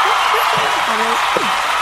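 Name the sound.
applause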